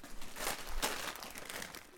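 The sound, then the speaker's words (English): Crinkling of a Monster Munch crisp sharing bag being handled, a steady run of papery rustles and crackles with one sharper crunch near the middle, fairly quiet and with no voices. “I'm going to have a look and see if I've got the Monster Munch here.”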